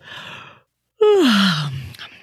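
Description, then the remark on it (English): A single big, drawn-out yawn: a breathy intake, then a loud voiced groan that slides steadily downward in pitch and trails off into a breathy exhale, with no talking. “Yep, that's a giant yawn.”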